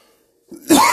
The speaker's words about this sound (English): Start out with a cough.